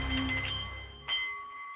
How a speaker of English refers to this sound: the Nepalese. Meditation Bowl is chiming, centering your mind and delight on The Art of the CEO